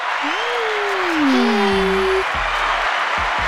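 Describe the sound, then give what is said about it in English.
Steady crowd applause, a dense wash of clapping that holds for the whole few seconds, with a couple of drawn-out tonal whoops or horn-like notes gliding over it near the start. “You didn't hear the claps and the applauses?”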